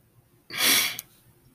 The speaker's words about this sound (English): And I'm not crying because I'm sad. I'm crying because I'm overwhelmed with joy.